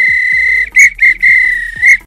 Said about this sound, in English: If this were a real bit of extra time, this is when the referee blows the whistle because it's finished.